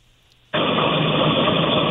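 Subway background noise on a phone call from a caller riding a subway train: after a half-second of near silence, a loud, steady, hissing roar cuts in abruptly and holds constant, with no voices.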